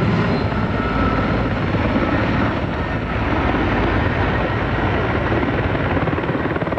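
Loud, steady rotor roar of two Air Crane helicopters passing overhead while dumping water on a fire in Lane Cove National Park, a continuous low thumping drone that fills the whole stretch without letting up, with no voices.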